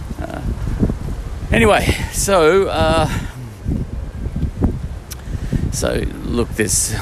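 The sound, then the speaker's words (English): Strong wind gusts roar and buffet the microphone outdoors behind a hangar on a day of about 41 degrees, with a steady low rumble, while a voice speaks briefly over the blustery noise. “It's very windy.”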